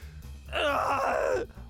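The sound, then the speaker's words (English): A voice imitates a screeching owlbear roar during a role-playing game, the owlbear roaring back in pain: a strained, raspy cry of almost a second that rises loudly and slides downward in pitch, over a low background hum. “It roars back at you, this like screeching owl sound.”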